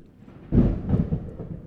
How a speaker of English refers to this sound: Ooh, thunderstorm.